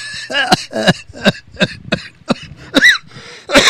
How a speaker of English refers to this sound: Damn, I made myself cough.